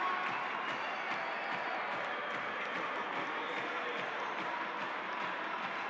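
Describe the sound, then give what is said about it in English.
A large basketball arena crowd at a Jazz game cheers and applauds during a 14-0 run, in a dense, steady roar that holds at an even, loud level for about six seconds, with scattered sharp claps poking through the wash of noise. “Crowd loving it.”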